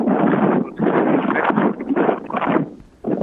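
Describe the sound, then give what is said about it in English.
Loud, rumbling wind buffeting a microphone in several broad gusts, each a few tenths of a second long with brief dips between, harsh with no speech. “It's getting kind of windy on your end for a second there, man.”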